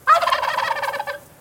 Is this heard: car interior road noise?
no